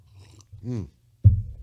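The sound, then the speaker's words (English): A brief slurping sip of coffee, followed a moment later by a soft thump like a mug being set down, over a low background hum. “Sip coffee, get on with my point.”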